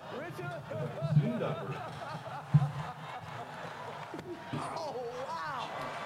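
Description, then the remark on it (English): One sharp, loud smack of Will Smith's open hand striking a face cuts through a murmuring crowd, with voices chatting and light laughter continuing before and after. “Yo, it seemed like a freaking WWE slap.”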